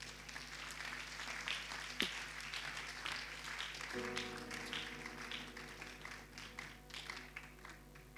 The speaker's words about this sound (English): If you don't clap, it means that you are guilty.